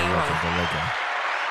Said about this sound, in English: Yo, congrats! You hit the applause, bro.